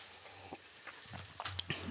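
A quiet sip of Brazil Canaan Estate coffee from Middle Fork Roasters from a cup: soft slurping with a few small wet clicks, peaking briefly near the end, with no one talking.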